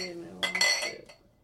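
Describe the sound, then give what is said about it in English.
Glasses clink together in a quick toast: a few bright, ringing taps that shimmer briefly and fade, with a faint murmur underneath. “So there's just cheers to chosen family traditions. Yeah. Cheers to that.”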